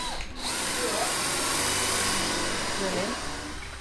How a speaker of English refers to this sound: He's sanding the wood down, ready for it to be all made to be built and sanded it ready for when they construct it into whatever they're going to construct it into.